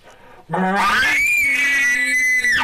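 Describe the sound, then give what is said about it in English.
A person imitates a bull elk's scream: a loud, sustained high-pitched whistle over a deeper voiced growl, held for about two seconds before cutting off sharply. “Hear the difference in that scream there?”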